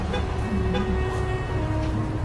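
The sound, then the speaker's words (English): A steady, dense din of street traffic near the Staples Center in Los Angeles on a gray January day fills the background, a continuous low rumble with faint sustained tones that could be car horns, and no one speaks. “As I approached the first parishioner to offer him the communion elements, he whispered over the low din of traffic, "Kobe Bryant is dead."”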